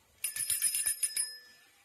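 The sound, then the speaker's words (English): A small bell rings rapidly, about eight quick bright strikes in a second, then its metallic tone lingers and fades away. Fairly clear, with no voices. “One of them is the maid and the other one is rings the bell.”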